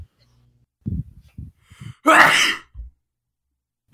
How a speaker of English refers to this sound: Stop sneezing, motherfucker. You don't have time to be sick.